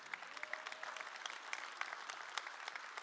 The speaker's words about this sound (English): Yeah, if you clap, awesome, whatever.